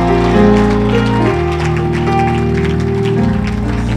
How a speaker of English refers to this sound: Clap for the Lord Jesus.